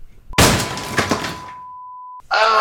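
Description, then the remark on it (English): A car crash sound effect: a sudden loud smash with shattering glass that crumbles away over about a second, under a steady high-pitched tone that holds, then cuts into a brief bright buzzing burst. “We were recording this in a car, we got a car crash, you see.”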